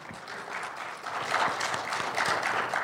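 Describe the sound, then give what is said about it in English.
A crowd applauds a guest from the audience who has just been introduced, steady dense clapping with many overlapping hands, a bright crackling texture that swells slightly louder midway and holds, with no talking over it. “Round of applause.”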